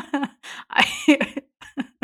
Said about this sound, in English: I started coughing up the black. I bet you I had a black spot.